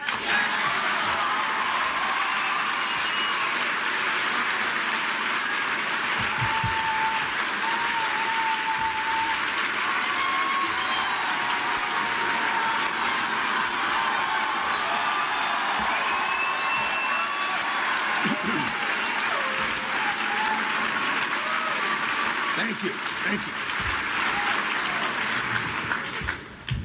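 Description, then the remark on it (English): A crowd applauds steadily for almost half a minute after a mention of liberty, freedom and the pursuit of happiness, dense clapping mixed with scattered whoops and cheers, staying loud and even throughout before tapering slightly at the end. “Now, those of you watching at home may wonder why this is being applauded.”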